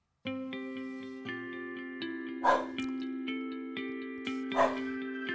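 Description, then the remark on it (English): A dog barks twice, spaced a couple of seconds apart, each bark fairly loud, over a steady backdrop of sustained musical tones. “Whenever I hear a dog bark, a cat meow, the sounds of nature all around me, somehow it puts me at ease.”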